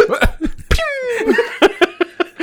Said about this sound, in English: Coughing, it sounds like the old tobacco.